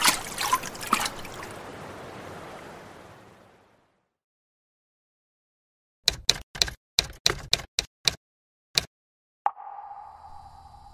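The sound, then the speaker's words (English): Loud rushing, splashing ice-cold water crashing down as someone plunges forward, thinning out and fading to silence over a few seconds, followed later by a quick series of sharp clicks and a steady electrical hum. “The water feels like ice-cold daggers crashing down onto me as I plunge forward into the void.”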